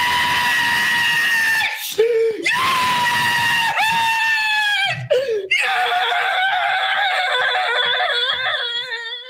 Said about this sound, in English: But he was visceral in his scream is brilliant. I might drop it in here so people can hear it. It's brilliant.